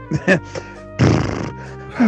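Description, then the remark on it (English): A person imitates horse noises: a few short grunting snorts, then a longer, breathy, fluttering snort, ending with another brief vocal burst. “I'm making more horse noises.”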